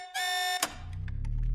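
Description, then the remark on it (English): A loud, steady electronic alarm tone blares for about half a second, then cuts off with a sharp burst, leaving a low rumbling, pulsing noise underneath. “Finally, the lights came back on, and the alarm fell silent.”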